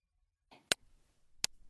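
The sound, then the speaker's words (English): Two sharp, dry hand claps about three quarters of a second apart in an anechoic chamber, each stopping instantly with no echo or ring, over a faint rustle. “That's the sound of me clapping.”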